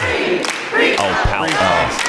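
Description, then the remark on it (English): A loud pro-Palestinian protest crowd, some wearing masks, chants "Jews say ceasefire now" in unison, voices rising and falling together, while sharp, irregular handclaps cut through, clapping after the San Francisco City Council voted 8-3 to support a ceasefire. “Yeah, they're clapping because the San Francisco City Council, with all of its power over international affairs, had just voted by a score of 8-3 to support the ceasefire.”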